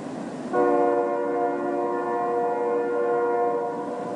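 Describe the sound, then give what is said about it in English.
A train horn blows in one long, steady chord from a distance, sustained for several seconds over a low rumble of rail noise, with no talking. “If you've ever put your head down on a railway track, you might have heard a distant train.”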